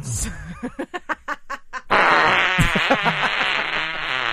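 A comedic fart sound effect: a quick string of sputtering pops that gives way to a long, loud, raspy blast lasting a couple of seconds, prominent with no talking.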